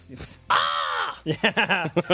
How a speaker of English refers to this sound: Those birds are not indigenous to this area.